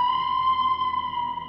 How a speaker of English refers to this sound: Throw the classic alien siren in right now.